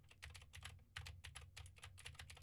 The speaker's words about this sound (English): Now I am typing on a keyboard with Gateron blue switches to see how much of my voice versus how much of the keyboard it picks up.